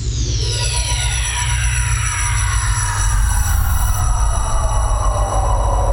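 Hands running through hair at the Nomad, heard as a loud, steady rushing rumble with whining tones that slide downward in pitch, lasting about six seconds with no talking.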